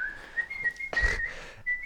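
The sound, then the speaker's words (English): Someone skipping along whistles a bright, cheerful tune, sustained notes gliding gently up and down, with a short breathy burst partway through before the melody resumes. “And from Stank's perspective, he's skipping along, joyously whistling a tune.”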